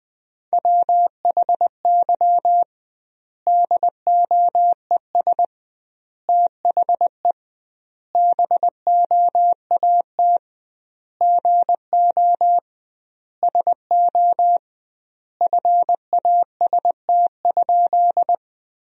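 Morse code at 20 words per minute with double word spacing, sending sentences built from the top 500 words: a single steady mid-pitched beep keyed into quick dots and dashes, sent in bursts separated by short silent gaps, with no voices.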